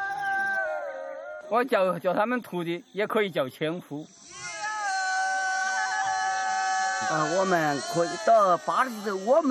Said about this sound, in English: These goats are unique to Shennong Stream. They are raised by boat trackers.